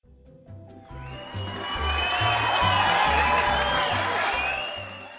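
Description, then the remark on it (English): A cheering fans sound effect: a crowd cheers and whoops, the roar swelling louder over a few seconds, with a pulsing low rhythmic beat underneath, then easing off slightly at the end. “And the sound of our cheering fans means it's time for some bubbly bibbly talk.”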